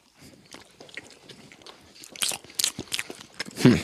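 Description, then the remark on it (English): Someone bites into a thick, inch-and-a-half square, three-layered treat covered in chocolate and red, yellow and white sprinkles and chews, giving a run of irregular crisp crunches and wet bursts that grow louder, with the heaviest crunch at the end. “So right now, while we eat this first bite here, are we taking a bite?”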